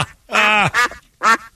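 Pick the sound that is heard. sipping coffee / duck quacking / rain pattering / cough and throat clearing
duck quacking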